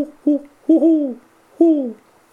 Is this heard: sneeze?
no